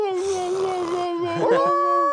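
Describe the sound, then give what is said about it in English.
A person imitates a beagle's baying with one long, steady, mid-pitched howl that wavers slightly, then swells louder and bends upward near the end. “They're hounds. They're fucking hound dogs. Yeah, man. Yeah. That's what it sounded like.”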